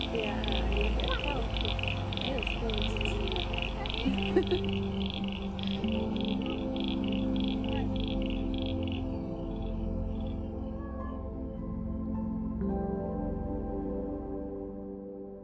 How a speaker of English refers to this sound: Do you think it's more than one species? No. How many frogs? A few. I can never tell. There's at least 3, 4, 5, 6. 10? 10? I hope there's plenty of lady frogs too.